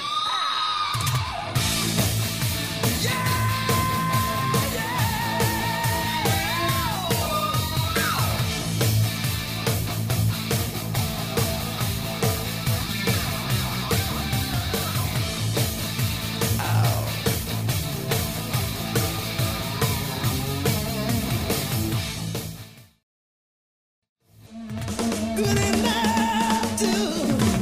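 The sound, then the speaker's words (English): A loud, dense hard rock song from a 1986 LP played on a record player with the needle dropped, with pounding drums and a high, screaming lead vocal. It plays steadily, cuts to near silence for a second, then comes roaring back. “you put that thing on, took the needle, dropped it down, and this is what it sounded like.”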